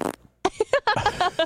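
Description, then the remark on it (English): A loud fart: one quick blast, a brief pause, then a sputtering run of short, rhythmic pulses that rattle on for about a second. No one speaks. “Sometimes it happens. Sometimes it happens. You want me to be uncomfortable all day? I'm just like, ooh, like wincing and stuff. No, sometimes you have to let it out.”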